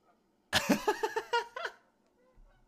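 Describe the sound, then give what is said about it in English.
A quick burst of nasal, goose-like honks, about six or seven in a rapid, uneven run lasting just over a second, fairly loud, likely a voice imitating a flock of geese. “Thank you so much to our episode sponsors, A Flock of Geese.”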